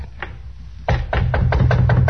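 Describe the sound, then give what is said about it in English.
A quick series of about six solid, loud knocks on a wooden door, with a heavy thudding body, preceded by one fainter tap. “About midnight, we knock on the door and say it's the bellboy.”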